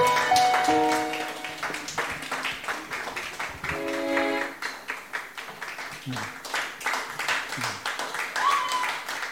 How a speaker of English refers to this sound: I'm surprised that you are clapping. I thought you won't clap, because I thought you should be caught up in thinking, is your name in this book of life? So I'm surprised you are clapping, because I say there will be surprises on the final day.